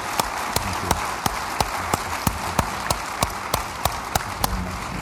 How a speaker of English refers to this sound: So let's hold our hands and give a big applause for his excellent speech below and for your participation.